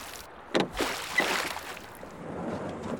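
A few soft splashing strokes of oars dipping into river water as a small boat is rowed across, with a gentle sloshing wash in between, with no one talking.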